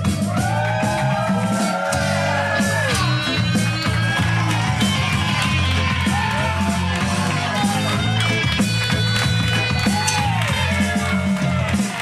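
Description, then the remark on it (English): A large crowd at UCB cheers loudly and continuously, full of overlapping whoops, shouts and yells rising and falling over a dense, steady roar that never lets up. “Oh my God, what a crowd.”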